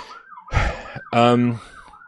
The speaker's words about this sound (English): a siren's on my end.